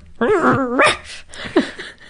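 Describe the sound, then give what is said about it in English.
A person's voice imitates a female pet dog growling and barking in its dream, with a wavering, muffled growl-like whine followed by a few soft, clipped barks, moderately loud. “I love when my dog growls and barks in her dream.”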